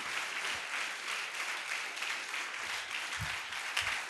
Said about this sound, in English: Put your hands together for Jesus. Oh, keep clapping to the glory of God. Keep clapping.